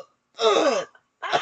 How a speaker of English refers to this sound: Sorry. I have that cough that I have. I'm sorry. That was a really bad spell.